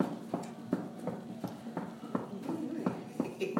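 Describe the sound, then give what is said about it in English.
Feet stomp on a floor during a leg break in an exercise workout, in a steady, quick rhythm, about a dozen thumps roughly every third of a second, with a faint background hum underneath. “Let's take a nice little break for our legs. So we'll just stomp them out.”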